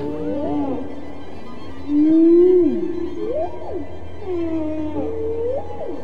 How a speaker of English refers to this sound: Dr. Payne's whale songs are now part of a concerto called And God Created Great Whales, played this week for the first time by the New York Philharmonic.